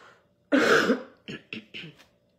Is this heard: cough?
yes